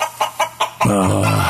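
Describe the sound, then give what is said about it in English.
Chickens on an egg farm cluck in a quick run of four short, evenly spaced clucks, then break into a louder, sustained squawking cackle, clear with no voices. “many major egg farmers have lost thousands of birds, making for fewer eggs.”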